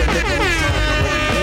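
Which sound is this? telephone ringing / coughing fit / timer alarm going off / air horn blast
air horn blast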